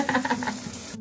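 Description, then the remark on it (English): Shower water runs from a shower head down onto a person standing under it in a steady hiss that fills the whole second, with a few brief tonal squeaks early on and no voices. “Right now, I'm standing under the shower head as the water is running down my body, and it feels so good.”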